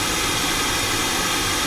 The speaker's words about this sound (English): I always find the pink noise really illustrates the difference between mics.